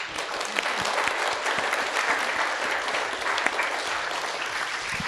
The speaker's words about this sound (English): I think we should clap to that.